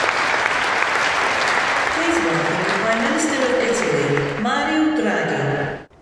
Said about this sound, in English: I don't know what's worse. The fact that he clapped for a speech that he didn't hear